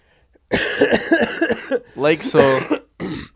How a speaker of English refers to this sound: Look, you guys, excuse me. I just got over an extremely big cold. I was like death row on Thursday, Friday, and I've been sick as hell. So pardon the voice, and obviously you guys are all used to my coughing and clearing my throat by now.